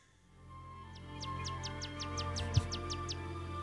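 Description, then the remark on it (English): Two American bald eagles fighting and calling in a forest: a quick, evenly spaced series of about a dozen high, thin chirping whistles, fairly clear over a low steady background hum, with one brief thump near the end. “it's two American bald eagles.”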